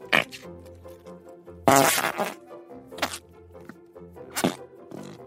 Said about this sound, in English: Want to hear this fart, buddy? It's pretty great.